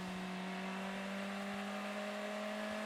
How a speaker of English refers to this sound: Now, if he's not going to get that car back under its own steam, it's all uphill after Canada Corner. Do you know what? That's running better now. He's got a few more revs.